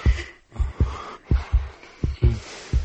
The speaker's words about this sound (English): Just thinking about him now is making my... making her heartbeat quicken.